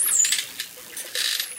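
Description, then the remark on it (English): Bottlenose dolphin whistles: a high squeaky sweep opens and another sounds at the end, with bursts of rapid crackling clicks between them. Clear, no talking. “Bottlenose dolphins have more than 100 different whistle calls. They range from a high-pitched screech to a short click.”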